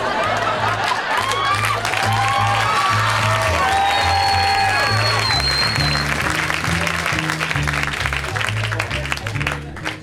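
A club audience claps steadily and loudly throughout while scattered laughter and whoops rise over the applause, reacting to a comedian's act, with a low rhythmic thumping underneath.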